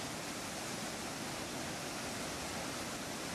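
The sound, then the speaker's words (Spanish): A steady, dense roar of rushing water pours out without pause as sluice gates open, releasing about a million tonnes of radioactive water into a reservoir, heard alone with no voices and no change in intensity. “Pero de pronto, las esclusas comenzaron a abrirse.”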